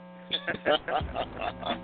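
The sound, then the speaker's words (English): A steady electrical hum drones through a phone line, a constant buzzing tone running under a muffled, intermittent voice for the whole stretch. “you got a hum going on. Sounds like you are aboard the Millennium Falcon”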